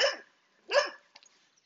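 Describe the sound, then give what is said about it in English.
Two short, sharp dog barks about three-quarters of a second apart, fairly loud, followed by a few faint soft noises with no talking. “But if two of them, though, it's always the good one, and it's always the one that want to bark at you.”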